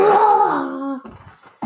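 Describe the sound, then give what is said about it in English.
A child imitates the bigger roar of the grown-up Simba from The Lion King with a single loud, drawn-out vocal growl that slides downward in pitch and breaks into a rough, breathy tail, followed by a brief sharp breath. “Does he do a bigger roar when he gets older? Yes, like this.”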